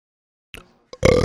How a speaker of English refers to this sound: Okay, I was like, wait, who did it? Because I didn't do it. Please edit out that disgusting belch out of the podcast.